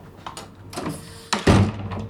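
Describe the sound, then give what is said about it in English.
A humidity- and light-controlled storage cabinet door opens in a storage room of the National Museum of American History in Washington, D.C.: a few soft clicks and rattles, then a sharper latch sound and a brief louder sliding rumble, with no talking. “while she carefully removes it from the humidity and light-controlled cabinet where it's stored now.”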